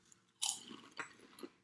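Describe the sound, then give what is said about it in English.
Crisp crunching of chicken-flavored potato chips from France: a sharp, bright bite followed by a few smaller crackling chews, with no talking. “But now we're on to chicken-flavored chips from France.”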